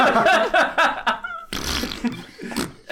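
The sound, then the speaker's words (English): A burst of laughter gives way to a loud, sputtering mouth noise, a person imitating a wet fart with noisy, spitting breath for over a second. “It's a wet fart.”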